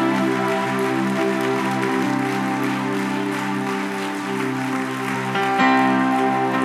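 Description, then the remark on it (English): A church audience claps their hands for God in a steady, dense burst of applause lasting several seconds, layered over sustained instrumental chords, with the clapping swelling slightly toward the end. “Come on, give God a hand clap today.”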